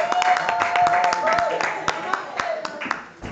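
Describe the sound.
An audience claps steadily for a few seconds to welcome the next act, many hands making a dense, uneven patter of sharp claps, with cheering voices and a sustained high whoop rising over the applause.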